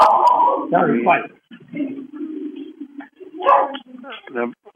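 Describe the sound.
A dog barks and yips in short bursts, mixed with muffled voices and a steady low hum in the background.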